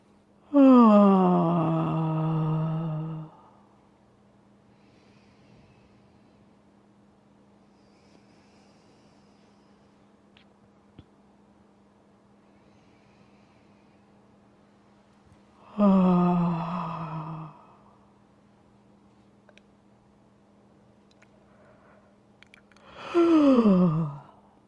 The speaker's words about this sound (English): And if you like that, you can do that vagus nerve yawn again. So taking that inhale into your low belly and exhaling with that sigh. Or actually doing the yawn. And you can do a few of those here.